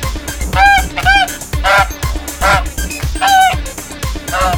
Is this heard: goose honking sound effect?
yes